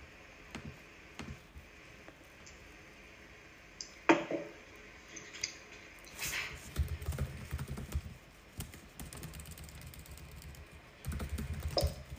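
Rapid, heavy typing on a computer keyboard by someone responding to an instant message, a dense run of clattering keystrokes in uneven bursts with a few louder thumps, no voices over it.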